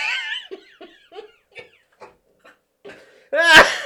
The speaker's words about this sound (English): Oh, I'm going to cough up a lung here.